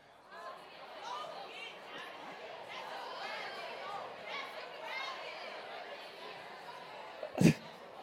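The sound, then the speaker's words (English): A steady wash of overlapping voices as an audience chatters among itself during a talk where the speaker asks whether they see a duck or a rabbit in a picture, busy and animated throughout, with a brief sharp thump or clap near the end. “The crowd is lively today.”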